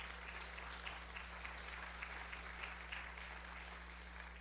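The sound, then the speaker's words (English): An audience breaks into steady applause, a dense, even patter of many hands clapping that holds at a moderate level throughout, with no talking over it. “It's good to clap for marriage.”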